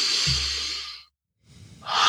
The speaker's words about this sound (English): Good. Take a deep breath in and out.